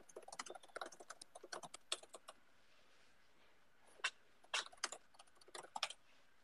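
Quick, uneven clicking of computer keys, typed in bursts with brief pauses between them. The clatter is light and fairly close, with no voices over it.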